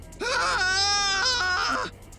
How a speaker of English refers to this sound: Without warning, the kit bag lurched away from me. The scream that had been bottling up inside me all night came tearing out.